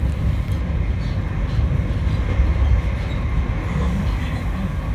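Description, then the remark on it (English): Steady low rumble and rattle of a train carriage in motion, a continuous dense roar with faint clattering detail throughout, recorded from inside, no voices. “The places that I frequented at that time were mainly trains, the insides of trains.”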